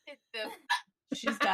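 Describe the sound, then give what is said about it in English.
A woman hiccups in a run of voiced hiccups, four or five sharp little gulps in quick succession with short pauses between them, fairly loud and otherwise alone. “She's got a case should of a hiccup.”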